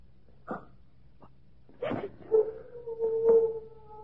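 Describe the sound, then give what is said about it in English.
A dog gives a few short barks or yips, then lets out a single long, wavering howl that fades after a couple of seconds, with no voices. “Only one of the dogs.”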